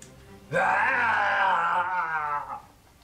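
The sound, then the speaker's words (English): A person voices a bugbear's scream: one loud, drawn-out wailing roar lasting about two seconds, rising sharply then trailing off, with no talking around it. “And the bugbear screams.”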